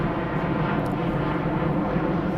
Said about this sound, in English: There's a plane, because Zoe lives under planes.